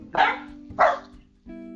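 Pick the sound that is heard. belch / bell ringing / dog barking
dog barking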